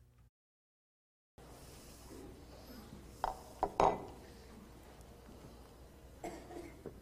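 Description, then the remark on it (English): A preacher drinking water from a glass during a sermon: a few light clinks and soft knocks of the glass, with a brief cluster midway and one more later, over quiet background hiss and no talking. “Okay, that was the drinking water part of a sermon.”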